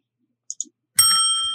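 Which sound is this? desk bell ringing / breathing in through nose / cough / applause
desk bell ringing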